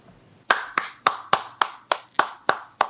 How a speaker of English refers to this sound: I'm applauding that. That's impressive, my friend.